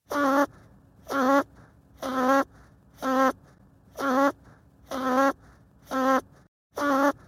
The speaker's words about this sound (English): Any guesses on what that was? That's actually an archival recording I have of my father snoring that I sped up 20 times. So, probably pretty tricky for you to guess.